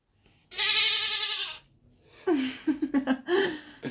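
A loud, nasal goat bleat rings out for about a second, close and clear; after a short pause come several choppy, laughter-like vocal bursts.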